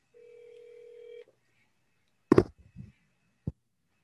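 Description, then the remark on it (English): A phone call is dialed on speaker and gives one steady electronic ring tone lasting about a second, followed after a pause by a few thumping clunks and a sharp click. No one speaks. “Can you hear that phone ringing?”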